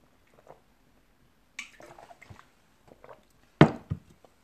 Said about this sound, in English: Okay, so I'm just gonna drink water here and start performing.